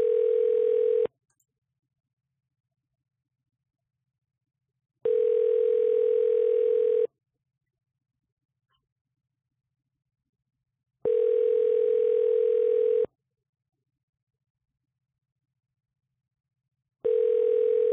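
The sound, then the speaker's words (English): A phone line ringing while waiting for someone to answer: steady, buzzy mid-pitched tones about two seconds long, repeating after roughly four seconds of silence, four rings in all with no voices. “Oh, wait, they didn't pick up yet. Knock, knock. Ring, ring.”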